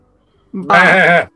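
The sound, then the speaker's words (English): A person imitates a sheep, letting out one loud, drawn-out bleat with a shaky, quavering pitch, followed by the brief start of another vocal sound. “It's like, I thought it was sheep. Far. What the sheep do?”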